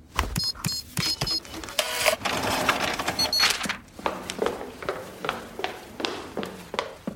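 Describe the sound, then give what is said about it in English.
A printer runs: high electronic beeps and a whirring mechanical rush of feeding paper, then a series of sharp, rhythmic clacks as the print head moves. No one speaks. “Is there a printer in here?”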